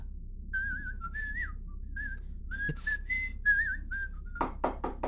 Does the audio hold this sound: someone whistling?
yes